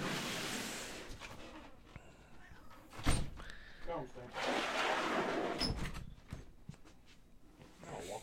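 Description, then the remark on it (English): A door opens to let in a cat meowing at it, with a sharp latch clunk, followed by rattling and a second knock as it swings, while people talk quietly in the background. “Here's the old kitty cat meowing at the door. You can let him in.”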